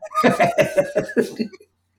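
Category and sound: human body sound, cough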